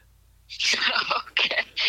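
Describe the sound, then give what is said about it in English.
A child's voice imitates their mother's sneeze, a breathy, hissing burst followed by a couple of quick, sing-song syllables, fairly loud against a quiet background. “When mom sneezes, what does it sound like? Like... her exact sneeze.”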